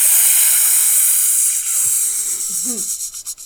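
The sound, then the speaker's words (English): A steady, loud vocal hiss like air rushing out of a deflating balloon, voicing a creature's non-menacing hiss, fills the whole clip, with a few brief low voiced sounds breaking through near the end. “It's a sort of like the hiss of a air being let out of a balloon, like.”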